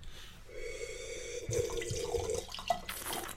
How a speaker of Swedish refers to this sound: Jag fyller på lite där. Ja, en liten skvätt.